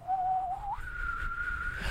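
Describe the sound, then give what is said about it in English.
A lone whistle imitates a theremin: a steady eerie tone that slides smoothly upward to a higher pitch and holds there, wavering slightly, with no talking. “They use a lot of these synth sci-fi whistles and hoots. Yeah, the theremin also. The theremin, that's what I'm thinking of.”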